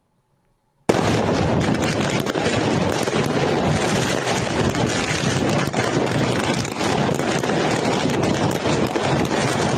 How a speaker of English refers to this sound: Let's do that video. If we'll show the fireworks video right there, Ryan,